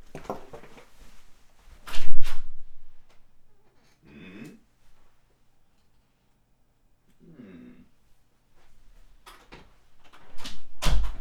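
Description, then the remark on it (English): Sharp knocks on a door ring out near the start, then a quiet stretch with faint muffled sounds, before another loud burst of knocking closes things out. “I thought somebody knocked at my door, but that is curious because I'm the only one here.”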